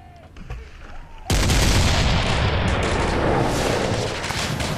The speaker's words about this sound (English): Before he could even think, cannonballs ripped through his ship. One of them caused an explosion, and pieces of wood were flying everywhere, barely missing him.